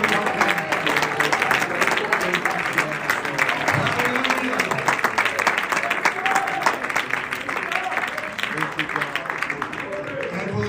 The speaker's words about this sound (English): Yes, Lord, we give it all. Clap your hands and celebrate the praise.